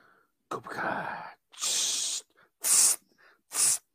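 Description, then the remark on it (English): Four short bursts of hissing spray, fairly loud, with brief pauses between them; the first is longer and rougher, the last two sharper and brighter. “Still love spraying. Love spraying this guy.”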